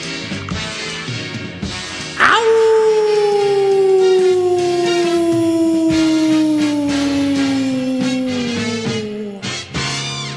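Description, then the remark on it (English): A person lets out one long, loud imitation of an animal howl, its pitch sliding slowly downward for about seven seconds over steady background music played by a band. “why don't you give us a howl before we go into the show?”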